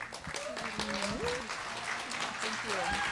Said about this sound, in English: So actually, before you finish clapping, this is going to be a little bit of a joint effort tonight.